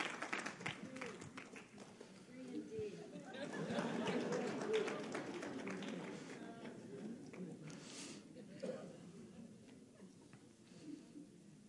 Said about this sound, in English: Can you guys clap for these guys? They're freed from sin.